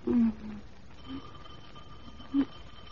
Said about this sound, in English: I think the doorbell stuck.